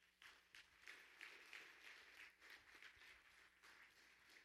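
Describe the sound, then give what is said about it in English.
A group of people claps their hands after a prayer, a steady, dense patter of sharp slaps that runs for several seconds, fairly soft, with no talking. “Get a little hand clap.”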